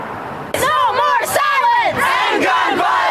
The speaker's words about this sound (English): And students rallied on the same field many of them ran to for safety during that false alarm in February, adding their voices to the collective call for action.